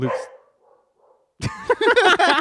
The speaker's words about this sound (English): We got some actual dogs in the house.